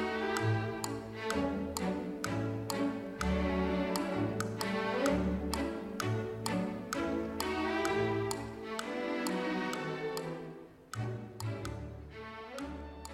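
A light orchestral tune with strings and a bouncy bass line, driven by a steady ticking clock-like rhythm of sharp woodblock taps throughout, with no voices.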